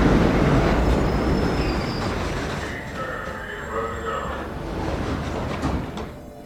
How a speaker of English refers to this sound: She got off the FDR at 61st Street and continued to Lexington Avenue, where she promptly got on the 5 train heading downtown.